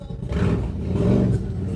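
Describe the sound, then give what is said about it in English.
A loud, low rumbling roar of a motorcycle gang's engines riding past an apartment in Astoria, New York, swelling slightly in the middle with a gritty, throbbing growl throughout. “Oh, there's a motorcycle gang coming by my apartment right now.”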